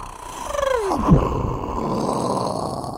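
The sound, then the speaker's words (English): A voice imitates explosions and helicopter noise into a cupped microphone: a falling, whistle-like vocal tone drops into a loud blown burst, followed by a steady, rough, breathy rumble held to the end. “And then we would cup the microphone and make, like, helicopter noises and explosions like this.”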